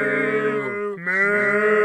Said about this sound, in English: Fine, I opened the door. It's a pack of 28 cows. Very specific. 28 cows sitting outside of our front door. They're actually standing.